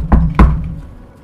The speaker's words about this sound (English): Maybe he's still asleep. Knock a little louder. You knock on the door again.